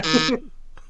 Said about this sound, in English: Where's that a fucking buzzer? Yeah, where'd that buzzer come from?